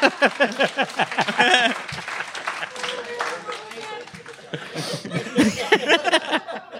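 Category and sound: crowd, audience applause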